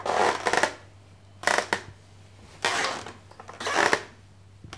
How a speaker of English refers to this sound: We heard a creaking sound overhead.